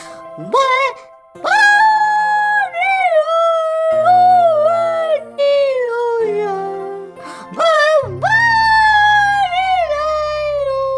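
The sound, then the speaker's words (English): A puppy howls loud in long, wavering notes that swoop up and fall away, several howls in a row, over a low, steady droning backdrop, as the puppy tries singing. “Next, the puppy tried singing.”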